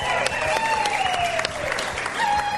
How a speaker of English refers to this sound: That sounded loud, right? Yeah. Roarous applause here if you couldn't hear it.